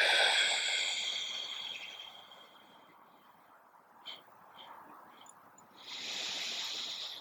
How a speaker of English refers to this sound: And as we breathe out, we're going to apply a bit of effort and pull the lower belly towards the spine. And you can breathe through pursed lips.